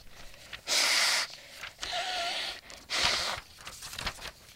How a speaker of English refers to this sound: You mind if I ask you to blow your nose real quick?